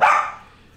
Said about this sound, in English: shut that dog up. He's having a spaz behind me.